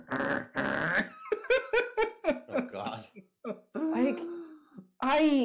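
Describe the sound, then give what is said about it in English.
A loud voice does a rough, cartoonish growling imitation of the growling sound effect from the cartoon Ed and Eddie, in a few gruff bursts, broken up by choppy laughter and vocal noises before one last raspy growl. “All I'm picturing is that, like, the growling sound effect from, like, Ed and Eddie, like the...”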